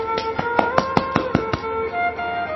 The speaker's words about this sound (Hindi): प्रसंग के लिए जोरदार तालियां सबसे पहले मैंने बजाई।